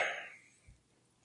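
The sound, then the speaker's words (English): A single quick sneeze, a sharp breathy burst that fades within a fraction of a second, fairly soft, followed by a faint low thump and then quiet. “Bless you.”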